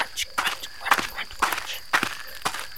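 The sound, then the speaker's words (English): Steady footsteps crunch on a gravel path, about two steps per second, each a short gritty scrape, moderately loud with no talking. “And the sound of my footsteps on a gravel path.”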